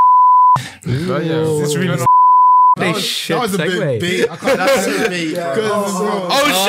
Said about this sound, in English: You're gonna have to bleep that shit out. Cut it. Just cut it. Too much beeping is annoying. Beeping is annoying.